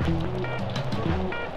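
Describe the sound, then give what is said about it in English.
A steady wash of falling spring rain, a continuous soft hiss at an even loudness, with faint sustained musical tones underneath. “And here's a familiar sound, a spring rain.”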